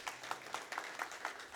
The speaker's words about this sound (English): Why don't we give the worship team just a round of applause? I think they're doing a great job, right?